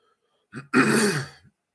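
A person clears their throat: a short rasping catch followed by a longer, gravelly rumbling clear lasting under a second, with no talking around it.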